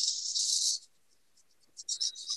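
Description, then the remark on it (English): Dry rice pours from a large glass container into a 1-cup measuring cup in a steady, bright rattling hiss that cuts off, then returns in a few short, uneven spurts. No one speaks. “So I'm going to pour out of this container into my 1 cup measuring cup.”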